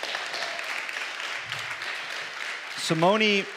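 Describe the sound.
A crowd applauds in a steady, dense wash of clapping for a few seconds, and then a voice cuts in over the tail of the applause.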